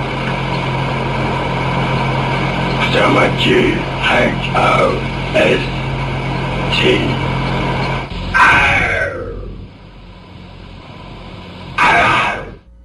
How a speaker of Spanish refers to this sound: El otro dice, sí, soy invisible y soy el que hace todo esto, esto en la casa, y enseguida suenan unos gruñidos demoníacos, extraños, de otra dimensión.